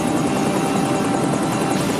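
A helicopter roars, its rotor blades beating in a rapid, steady chop over a dense engine whine. The sound stays loud and constant throughout, with no voices.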